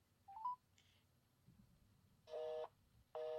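A phone call is placed and nobody picks up: a few quick dialing tones, then a loud, steady telephone busy signal, flat electronic tones pulsing on and off in an even rhythm over faint background hiss, with no voices.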